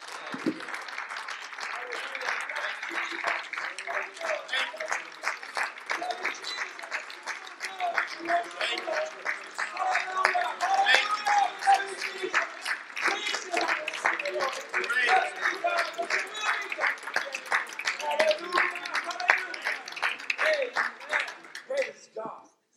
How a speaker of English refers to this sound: Praise the Lord. Let's just give the Lord a hand clap again. Amen.